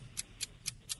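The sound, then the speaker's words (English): A game clock timer for a timed trivia round ticks steadily, four sharp, bright ticks at an even pace of about four per second, standing alone over a faint low background hum with no voices. “All right, start the clock.”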